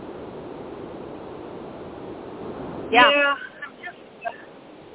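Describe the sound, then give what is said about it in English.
Steady, dull rumble of car road noise over a phone line from a caller in their car, filling the first three seconds before a single short spoken word cuts in, with the hiss continuing faintly underneath. “It sounds like you're in the air. No, I'm in my car.”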